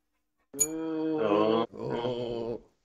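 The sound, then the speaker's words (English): A dog barks in two long, drawn-out, howl-like bursts, the first starting with a sharp yelp, loud and clear with no talking. “Not the dog bark, the other part.”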